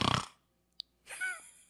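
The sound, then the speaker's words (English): Someone imitates loud breathing while asleep: a rough, forceful exhale, a short click, then a longer raspy breath with a slight throaty tone. No talking. “You just breathe really loudly when you're sleeping.”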